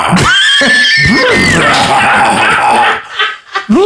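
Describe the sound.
A person does a loud, shrill horse whinny with their voice, the pitch wavering and sliding for about three seconds before breaking into a few short breathy bursts.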